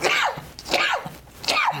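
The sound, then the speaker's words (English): Three sneezes in quick succession, evenly spaced, each a sharp burst that trails off, with no talking around them. “I'm gonna sneeze.”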